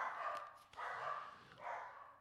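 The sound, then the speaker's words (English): Dogs bark three times at delivery people in a steady rhythm, somewhat muffled, each bark drawn out slightly, with no one talking. “They always bark at the delivery people.”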